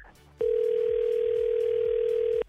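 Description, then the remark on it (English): A steady, unbroken telephone dial tone sounds loud for about two seconds over a faint hiss as a phone call is placed, then cuts off abruptly. “Okay, so why don't we call him? You're gonna be listening quietly on the phone, and we'll ask him straight up.”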